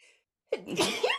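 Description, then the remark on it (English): A single sudden sneeze bursts out after a brief quiet pause, sharp and fairly loud with a breathy, noisy tail trailing off over about half a second. “Bless you.”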